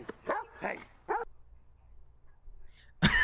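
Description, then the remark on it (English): A dog barks three times in quick succession at a man, who jumps; the barks are fairly loud, followed by a quiet pause, a faint high whine, and then another sharp bark at the end. “It barked at him, and he jumped.”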